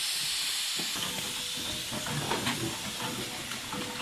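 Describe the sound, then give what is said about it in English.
Steady, broad hissing of escaping steam from a steam traction engine waiting in a driveway, ready to set off on a road run, continuous for the whole stretch, with faint mechanical clanks and rumbling underneath. No one speaks. “The first engine's in the driveway, ready to go, and Steve's just hitching up his trailer now.”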